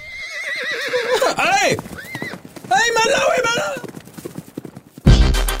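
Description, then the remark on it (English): A horse whinnies loudly in long, wavering cries while hooves clip-clop in a steady rhythm beneath, ending with a sudden burst of noise. “In fact, I'm going to give you a head start. I'm going to smack your horse's ass.”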